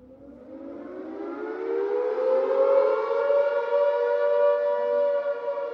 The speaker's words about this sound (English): The narrow streets are filled with the whine of sirens.